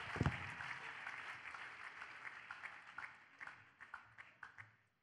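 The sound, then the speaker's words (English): An audience applauds for God after a testimony, many hands clapping in a dense wash that gradually thins, leaving a few distinct, louder individual claps toward the end. “I thought somebody is still clapping for this good God.”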